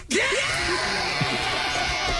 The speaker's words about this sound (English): that really loud scream